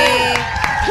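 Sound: audience cheering and applauding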